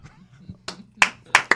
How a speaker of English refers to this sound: Right? Right? Somebody applaud. Come on. Come on.